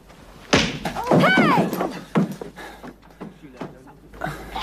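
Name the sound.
punch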